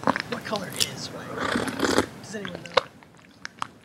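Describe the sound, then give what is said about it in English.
Loud slurping as a man sips noisily from a bowl, with several wet, rushing draws and sharp little mouth clicks in between, the bursts coming unevenly over a few seconds. “Oh, he's sipping. He's sipping big time.”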